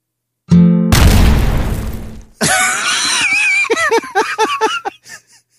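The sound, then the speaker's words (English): A small F chord on a guitar rings for an instant, then a loud bomb explosion bursts in with a heavy rumbling roar, followed by a chaotic stretch of crackling, squealing debris noise that fades out. “It is a small F chord on the guitar followed by a bomb explosion.”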